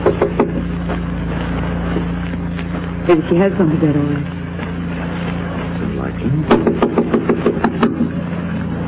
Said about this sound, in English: Here we are. Top of the stairs. I'll knock.